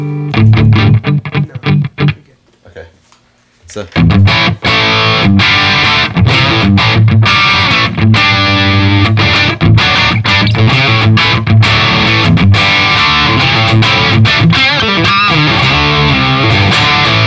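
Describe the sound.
Loud, heavily distorted electric guitar played through a German-made Engel amplifier, choppy riffs with sharp rhythmic attacks, pausing briefly for a few quiet spoken words before surging back in with dense, sustained crunch.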